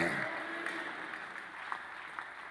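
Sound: audience clapping hands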